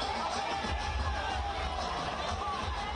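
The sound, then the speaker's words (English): A dense, massive crowd at a political roadshow for DK Shivakumar, who is on a special campaign vehicle as he files his nomination papers, roars with continuous overlapping chatter and shouts, a loud steady wall of babble with occasional whoops and cheers rising above it. “I'm definitely caught in the midst of crowd, but you can imagine, you can see where Mr.”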